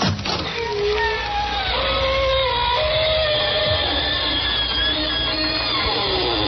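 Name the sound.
creaking door opening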